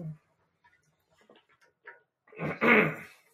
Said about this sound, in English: Let me clear my throat there and get some agua there. Been talking a lot.